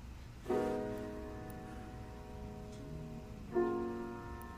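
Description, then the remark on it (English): Soft, gentle piano chords at the beginning of the first song on an album, two sustained chords struck a few seconds apart, each ringing out and slowly fading, with a faint hiss underneath and no voices. “Soft piano at the beginning.”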